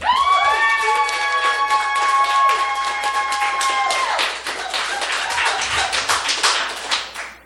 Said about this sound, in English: Please clap now.